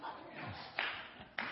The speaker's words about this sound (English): Just clap twice in it.